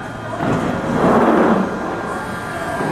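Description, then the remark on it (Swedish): A London Underground train rumbles steadily for a few seconds, a broad mechanical roar that swells slightly in the middle and then holds at a constant level, with the classic platform announcement "Mind the gap" as the train doors open. “Ja, det där var den klassiska uppmaningen i Londons tunnelbana när tågdörrarna öppnar.”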